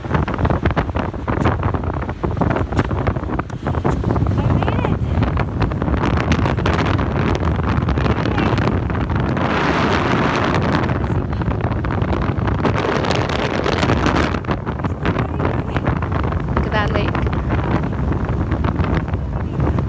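Strong wind buffets a camera microphone near the top of a mountain in a constant, loud low-frequency roar with gusty thumps throughout, almost completely masking a voice that can barely be made out underneath.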